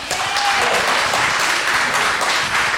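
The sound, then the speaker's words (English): An evening audience applauds steadily to signal agreement that President Trump should be impeached by the Democratic House, a dense wash of many hands clapping at once, loud and sustained for a few seconds with no voices over it. “Signal by applauding.”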